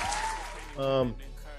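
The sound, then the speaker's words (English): A steady wash of audience clapping for the hosts of the show Aries Talking Sports, with a voice speaking briefly over the crowd partway through. “keep them clapping, y'all. We love the applause.”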